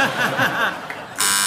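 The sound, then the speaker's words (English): A crowd chuckles and laughs for about a second, then a loud, harsh game show buzzer cuts in abruptly and holds a steady, flat tone to the end. “Fingers on buzzers, the rest of you.”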